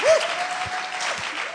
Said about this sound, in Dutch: Give your pastors a big hand. Laat ons pastors een groot applaus geven.